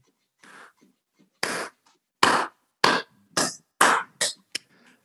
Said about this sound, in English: And I don't know if you can hear it, but my cat has like unearthed one of this fish that like flops on its own. So if you're hearing that, ka-chunk, that's it's the floppy fish. It's the floppy fish.